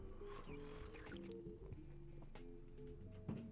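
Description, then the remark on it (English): Someone takes a few quiet sips of a drink, with soft wet slurping and small liquid sounds over a low, steady hum of background tones. “Hold on. Sip-a-doo.”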